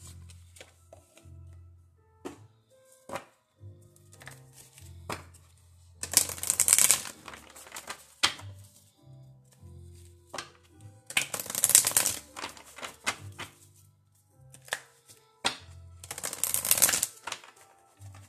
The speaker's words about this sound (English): Favorite part of reading cards, the shuffle.